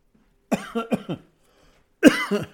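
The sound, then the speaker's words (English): Several loud coughs in two bursts, a rapid run of three or four harsh hacks, a pause of silence, then another cluster of raspy coughs, caused by an itch in the throat. “I've got an itch in my throat and I can't get it out. So I'm coughing to you.”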